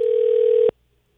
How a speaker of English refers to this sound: It's ringing.